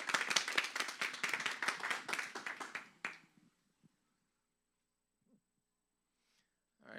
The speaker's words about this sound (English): Good job. Round of applause.